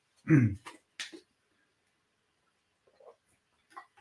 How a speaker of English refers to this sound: All right. Hopefully I'll stop coughing.